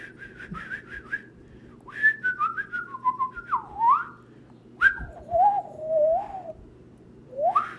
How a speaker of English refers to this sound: The birds are chirping.